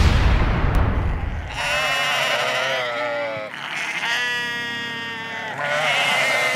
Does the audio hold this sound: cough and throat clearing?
no